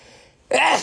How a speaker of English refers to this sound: I feel like I have to sneeze.